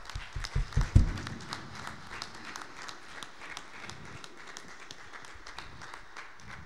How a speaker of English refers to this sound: Could we get a round of applause for our guests, please?